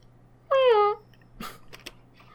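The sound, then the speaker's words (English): A person imitates a cat, meowing at a phone, with a single drawn-out, falling meow lasting about half a second, loud and tonal, followed by a few soft clicks and rustles. “You gotta do a real one.”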